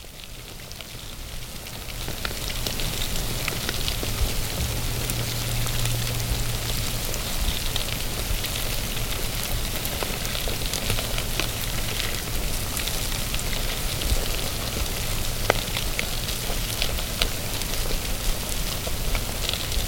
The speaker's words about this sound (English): Beetles do the job right every time. This is them feeding on a Tuesday morning. By the end of the week, this crow's carcass will have been completely consumed.